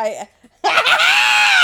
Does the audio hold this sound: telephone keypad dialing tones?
no